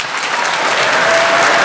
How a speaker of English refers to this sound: Well, it's probably reasonable to assume that the strongest applause on business tax breaks was coming from the Republican side of the aisle.